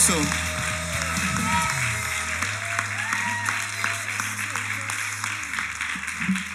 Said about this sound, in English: Why don't we give Jesus a round of applause? How about that? ¿Por qué no le damos a Dios un fuerte aplauso?